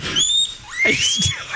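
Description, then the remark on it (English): A voice mimics a guinea pig, making high, thin whistling squeaks that glide upward, mixed with a few low grunting snorts, fairly loud over about a second and a half. “He goes, "I think the woman behind us has a guinea pig."”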